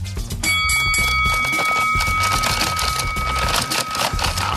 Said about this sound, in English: Do you have a bell that could be played? Yep, I got a bell.